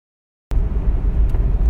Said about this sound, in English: So I've mentioned before that one of the times I like to record the most is when I'm quietly driving in my car.